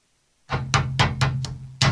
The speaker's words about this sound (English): Just trying to knock on the table.